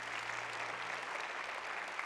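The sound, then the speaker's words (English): An audience claps together as a clap offering to the Lord, a dense, steady wash of applause, bright and crackling, with a faint low hum underneath and no voices on top. “One more time, give the Lord a clap offering.”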